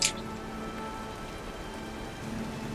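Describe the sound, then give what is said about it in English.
Steady, even rain patters on a surface in a continuous soft hiss, with a brief sharper splash at the very start and no voices. “The rain must be clouding the wiggle sniffer.”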